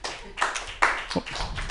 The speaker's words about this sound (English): We got a lot of respect here at Mutiny for women who raise their children with Christ in their heart, isn't that right? You can clap for that.